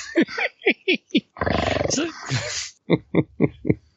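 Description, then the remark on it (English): A human voice mimics an animal growl: a few short guttural grunts, then a long rasping snarl in the middle, followed by a quick series of clipped grunting bursts. “I'll growl and then, point.”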